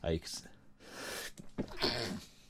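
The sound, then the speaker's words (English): A sharp, breathy sneeze bursts out, loud and abrupt, with brief voiced sounds and breathing around it. “Bless you.”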